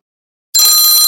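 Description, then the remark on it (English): After half a second of silence, a workout timer bell suddenly rings out loud at the end of a 30-second stretching hold, a bright, sustained metallic tone rich in high overtones that carries on steadily to the end. “And we're almost there on the bell.”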